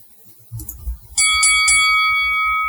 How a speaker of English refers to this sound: Let's ring the bell.